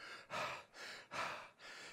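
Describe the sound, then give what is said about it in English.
A voice imitates the hard, heavy breathing of someone worn out: four loud, breathy huffs alternating in and out in a quick, steady rhythm, like panting from exhaustion. “Not getting to the other side, worn out, beat up, disgusted, breathing hard.”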